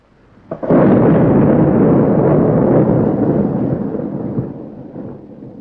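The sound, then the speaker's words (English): A sudden heavy explosion of a V-2 rocket bursts in with a sharp crack, then a deep, loud rumbling roar that rolls on for several seconds and slowly fades, with no voices present. “The V-2, outstripping sound in its lightning plunge from the stratosphere.”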